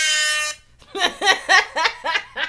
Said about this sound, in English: Dude, this new air horn is the one. I can't believe I found this.